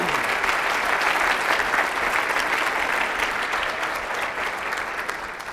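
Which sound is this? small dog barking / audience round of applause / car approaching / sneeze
audience round of applause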